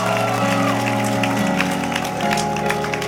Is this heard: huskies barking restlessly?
no